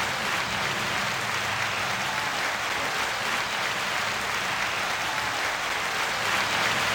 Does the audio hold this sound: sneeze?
no